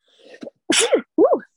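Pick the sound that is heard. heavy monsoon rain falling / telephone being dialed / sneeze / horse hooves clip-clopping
sneeze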